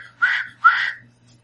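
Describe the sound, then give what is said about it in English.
Two short, shrill whistle blasts in quick succession, the second slightly longer, with a breathy edge and a faint low hum underneath; no one speaks. “Yeah, so you, in the corner of your eye, you see me saunter out, look at him, and like, get just really, like, kind of surreptitiously put the whistle in my mouth and...”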